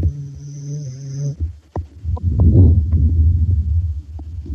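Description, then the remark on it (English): One of two dogs snoring, a low, rough, rumbling breath that swells and fades, with a few soft clicks, after a brief steady hum at the start. No one speaks. “See if you can hear him snoring.”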